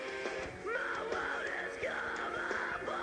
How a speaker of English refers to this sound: Oh, just wait until the verse hits. Dun, dun, dun, dun, dun. Ooh, it's so metal. It's so metal. Imagine long hair, screaming, scary looking guys, and then...